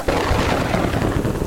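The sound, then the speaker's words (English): A loud, deep rumble of thunder with a lightning flash rolls on without a break, heavy in the low end with a rough, crackling texture throughout and no voices. “But right when I got to the top, lightning flashed.”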